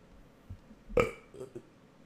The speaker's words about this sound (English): I got a burp. Hold on.